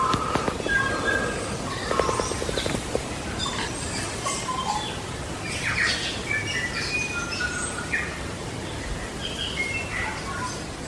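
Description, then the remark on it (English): A tui, a bird endemic to New Zealand, sings in the Otari bush in Wellington, New Zealand. It gives a varied run of bright whistles, pure tones and short clicks and chirps, continuing steadily over a soft, airy background with no voices. “And we're listening to the fantastic endemic bird known as the tui that lives in Wellington and surrounding areas.”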